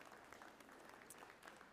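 A church audience applauds a volunteer group that installed new lights, a steady, dense patter of many hands clapping at once, sustained throughout the short stretch with no pauses.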